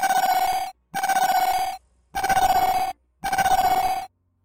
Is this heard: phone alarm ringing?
yes